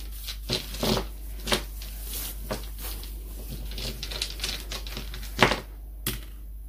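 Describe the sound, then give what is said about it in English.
Divination dice rattle and clatter in a quick, irregular series of sharp clicks as they are shaken and rolled, with a louder pair of knocks near the end as they come to rest. No voices. “So let's look at the divination dice next.”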